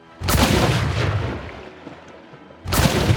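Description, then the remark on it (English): Two loud, booming explosion effects roughly two and a half seconds apart, each a sudden broad blast that trails off into a rumbling decay. No one speaks. “Just another goopy explosion.”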